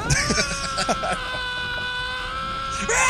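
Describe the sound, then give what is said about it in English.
Tom Cruise screams in one long, loud, high-pitched sustained cry lasting about three seconds, the voice straining and wavering slightly before surging again at the very end. “But first, here's Tom Cruise screaming.”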